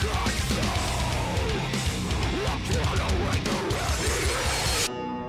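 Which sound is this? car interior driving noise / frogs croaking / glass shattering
glass shattering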